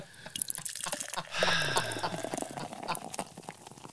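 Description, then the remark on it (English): Beer pours into a glass, a brief gush of liquid swelling to a steady fizzing splash, surrounded by soft drips and faint clinks, with no one talking. “Did you pour a beer?”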